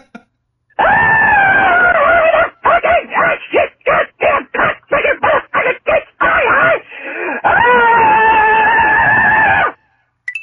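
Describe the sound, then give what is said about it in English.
A loud, demonic-sounding scream: a long sustained shriek, then a rapid stuttering series of short harsh cries, then another drawn-out shriek, with no other sounds around it. “Wow, that was a scream. Damn. That qualifies as a scream. Yeah, that is, yeah. That is very Satan-y.”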